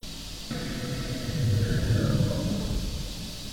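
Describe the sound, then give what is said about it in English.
A low, rumbling growl, captured on a digital recorder in a room, rises out of a steady hiss, swelling for about a second in the middle before fading back into the murky background noise. “A growl so loud we heard it at the moment and caught it on Prue's digital recorder.”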